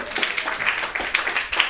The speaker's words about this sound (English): Round of applause for your DJ back there.